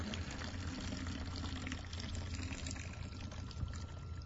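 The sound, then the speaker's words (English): Water pours steadily and continuously down into a pump pipe to soften the pump's leather, a full, gushing flow with a low hollow rumble, lasting the whole few seconds without any voices. “And so he would pour it down into that pipe.”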